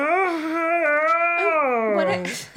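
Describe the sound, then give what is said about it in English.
A loud, drawn-out voiced yawn, one long tone that sags lower in pitch and trails off into a breathy exhale, with no other talking. “Sorry to interrupt that beautiful yawn.”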